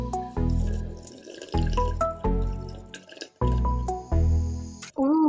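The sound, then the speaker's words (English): Someone drinks water, with a run of about five loud, wet gulps and swallows in an uneven rhythm and no talking. “Water break.”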